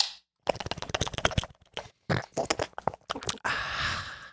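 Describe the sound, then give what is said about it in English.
A can of Sanzo Asian pear seltzer water is opened and sipped, with a run of sharp crackling slurps and gulps followed by a steady fizzing hiss at the end. “I've got some seltzer in front of me.”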